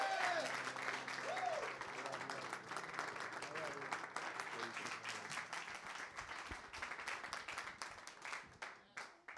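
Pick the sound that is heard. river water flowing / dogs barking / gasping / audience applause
audience applause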